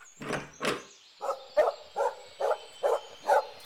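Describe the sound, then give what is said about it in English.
A dog barks in a quick, steady series of about nine short, sharp yaps, fairly loud, with a faint high hum in the background and no talking, at a home with a barn and horses. “Come here, you silly dog!”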